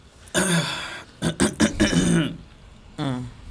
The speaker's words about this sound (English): Clear your throat one more time, because you're going to need that.